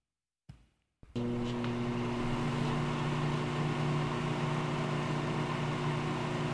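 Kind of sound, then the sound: household object, microwave oven running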